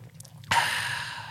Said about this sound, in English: When I drink this, I'm trusting that my body is still going to react the same way with water, right? Taking a sip on air.